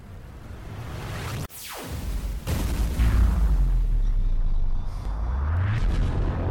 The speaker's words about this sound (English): There's been an explosion of some kind. We need to get you to an escape pod.